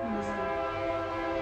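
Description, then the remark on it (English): A train horn blares steadily in a sustained, harmonic tone, loud, with a low rumble of rail noise underneath throughout. “God damn train.”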